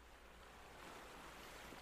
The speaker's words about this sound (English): Listening to the sound of the waves, feel that cool breeze against your skin.